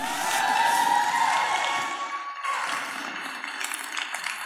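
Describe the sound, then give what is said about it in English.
A crowd cheers and shouts continuously, cheering on people doing push-ups, loud at first and easing slightly, with a steady roar of many voices and scattered whoops throughout. “Come on, cheer them on.”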